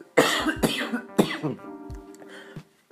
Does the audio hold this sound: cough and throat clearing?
yes